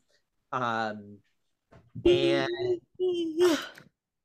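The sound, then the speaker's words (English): A big, drawn-out yawn stretching into groaning, moan-like bursts over a few seconds, with no words spoken. “Sorry, that was a big yawn.”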